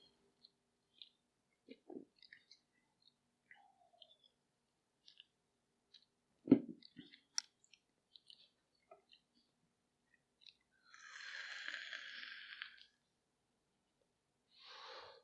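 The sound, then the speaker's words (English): Someone sips a Coke: faint mouth clicks and small taps, a soft knock midway, then a long breathy exhale, all quiet with no talking. “Now excuse me while I get another sip off of my Coke here.”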